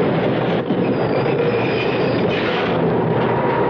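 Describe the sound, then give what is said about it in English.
A subway train that has left Manhattan rumbles steadily along the tracks, a loud, continuous roar with faint high squeals from the wheels and no voices. “It's our stop. We gotta get off the subway.”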